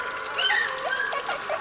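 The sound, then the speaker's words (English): A cormorant calls in a run of short, wavering tonal notes that rise and dip, moderately loud over a steady background hiss, with no one talking. “Cormoran.”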